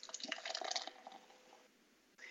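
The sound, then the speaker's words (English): Copper-colored lager pours from a can into a glass, a bubbly gurgle of liquid with fizzing that fades after about a second and a half, then a brief hiss at the end. No talking. “And the pour.”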